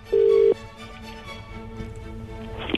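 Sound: phone call ringing tone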